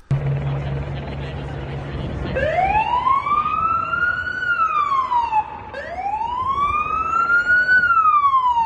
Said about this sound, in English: So, in the video, this is an ambulance coming up to Extinction Rebellion protesters blocking the road. The ambulance comes up, they will move completely out of the way. The ambulance goes through, they applaud, and the protest continues.